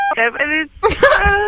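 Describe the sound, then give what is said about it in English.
A steady electronic telephone-line beep cuts in over a caller's voice, the tone loud while the muffled phone speech carries on around it. “Even the phone company wants to shut her up.”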